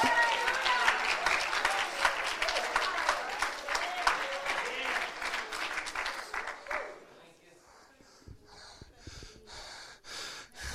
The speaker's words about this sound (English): Let's clap our hands to the Lord and thank him.